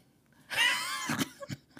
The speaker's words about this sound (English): Excuse me. You know what they say? They say when you're like giving speeches and talks and stuff, like, you don't hiccup and you don't sneeze and stuff. But guys, I'm recording a podcast and I just sneezed.